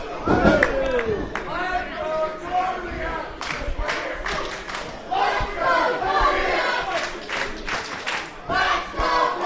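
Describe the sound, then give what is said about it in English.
A loud crowd cheers and yells continuously, with overlapping shouts rising and falling and scattered sharp claps or bangs cutting through the roar. “So the crowd is still rocking and rolling.”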